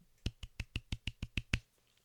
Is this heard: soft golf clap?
yes